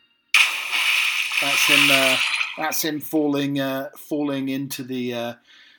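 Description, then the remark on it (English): A sudden loud splash as a person falls into water, its broad hissing spray lasting about two seconds, followed by a voice crying out in drawn-out wordless vocalizations. “That's him falling into the sea, or the little pond or lake.”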